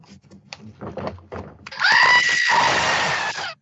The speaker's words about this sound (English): I thought for sure you'd have a screaming goat.